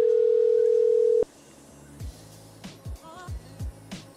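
A steady, loud telephone ringing tone of an unanswered call holds for just over a second, then cuts off abruptly, leaving a quiet background broken by a handful of short, soft thumps and clicks.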